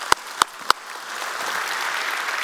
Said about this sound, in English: Come on, let's give the Lord a hand.